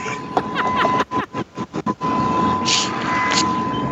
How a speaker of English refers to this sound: And now you've heard Jason move his car. That wasn't a reenactment. That happened.